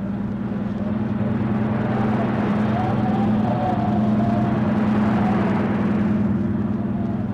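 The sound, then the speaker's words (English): A motorboat engine roars steadily at high throttle as the boat heads out to sea through rough water, a loud, continuous droning hum with a rushing wash of spray and water noise around it, holding full power throughout without pause. “He can't handle that boat, not in that sea. We go after him? We'll have to.”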